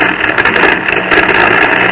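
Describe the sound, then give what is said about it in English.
A rough, sputtering old airplane engine drones steadily, its weak, uneven mechanical rumble holding at a fairly loud, constant level with no voices over it. “That airplane motor sounded kind of weak, didn't it?”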